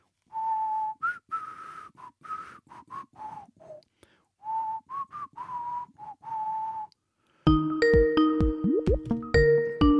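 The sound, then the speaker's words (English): A makeshift whistle, not a proper whistle, is blown in a string of short, breathy, wavering toots with brief pauses, loud, and a bright musical jingle cuts in at the end. “Got this one. That's not actually a proper whistle.”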